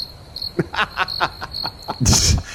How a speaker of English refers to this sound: you had to wait for it, but you knew you were getting the crickets on that.